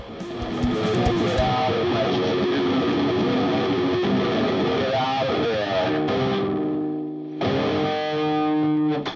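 Heavily distorted noise rock with a wordless, scat-like vocal buried in a loud, dense wall of fuzzy guitars and effects, briefly dropping out near the end before surging back.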